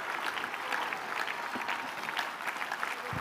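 A church audience at the Life Church claps hands in praise to the Lord in a dense, continuous wash of applause, steady and fairly loud throughout, with no single voice standing out.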